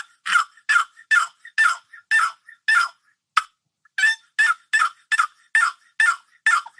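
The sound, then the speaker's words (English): A wooden box call imitates a gobbler's yelp: a slow, even series of raspy, mid-pitched yelps, about fifteen notes with a short pause midway, loud and clear with no talking. “That's a gobbler yelp. And you can turn your box call over like this.”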